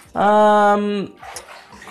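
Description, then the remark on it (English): A loud, sustained dog-like whine fills the first second, then water from a wet washcloth, lifted out of the bath by a young boy, drips and trickles softly back into the bath. “That's him taking the washcloth out of the bath and letting the water drain back into the bath.”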